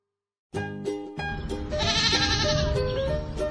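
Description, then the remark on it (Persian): A loud, close sheep bleat rings out after a brief silence, a wavering, drawn-out call with a strained, nasal quality that holds for about three seconds, with no talking over it. “گوسفند. گوسفند ما گرمشه، بابا صدا میکنه، انگار داره شکایت از این هوا میکنه”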